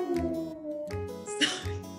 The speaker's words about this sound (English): the dog is barking at something. Can you hear him? Yep. Yeah. Yeah. I'm sorry. He normally doesn't bark. He's weird.